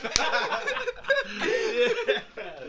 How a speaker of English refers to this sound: I'll take the box wine. Slap the bag, baby. Let's go.